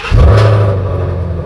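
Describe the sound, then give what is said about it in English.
A Mustang GT350 engine, just given a little Seafoam additive, revs in a single deep, loud burst, then settles into a steady rumbling idle with a throaty low drone. No one speaks over it. “Oh, God, that's a sweet sound. And that's after he gave it a little gulp? A little wake-up gulp of Seafoam. Little bump. Mustang GT350.”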